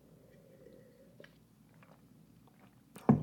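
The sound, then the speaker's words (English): Someone takes quiet sips of water with faint wet swallowing noises, a few soft mouth clicks, then a sudden louder clunk right at the end as the drink is set down. “And before we get into it, I'm going to drink some water because my mouth is drying out.”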